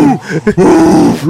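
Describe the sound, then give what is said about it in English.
A person imitates a bloodhound's bark with a deep, drawn-out, mournful baying howl that wavers in pitch, preceded by a few short gruff vocal yelps, loud and alone. “God, bloodhound barks are horrible.”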